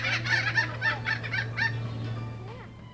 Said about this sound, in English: There are birds large and small, like the thick-billed parrot, whose noise can sound somewhat like a human laugh.